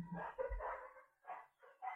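dogs barking

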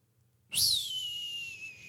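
human whistling a tune

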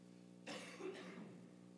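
coughing

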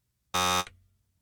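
game show buzzer pressed

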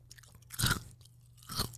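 chewing crunchy ice

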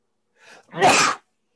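sneeze

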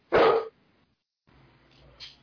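dog barking

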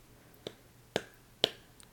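clapping

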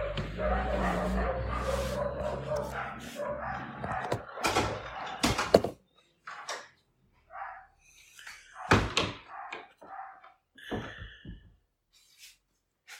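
dogs barking

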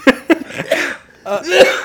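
coughing fit

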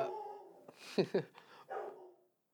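dogs barking

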